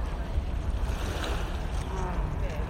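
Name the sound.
ocean waves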